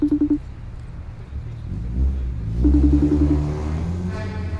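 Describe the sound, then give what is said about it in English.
A car engine stuck in traffic revs up with a rising, harmonic growl, dropping back to a low idle before surging again amid steady traffic rumble. “I'm stuck in traffic right now.”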